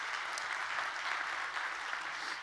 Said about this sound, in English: I see a lot of our J Kids workers over here in their orange shirts. Let's give them a great big hand clap, guys.